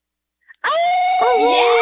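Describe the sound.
A person lets out a loud, sustained wolf-like howl, a single long voiced cry that wavers and bends in pitch toward the end, after a brief click.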